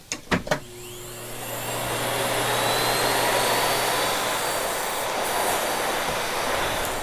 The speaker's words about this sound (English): One company that I love is a company called Miele out of Germany. And listening to a Miele vacuum fire up is just a beautiful sound.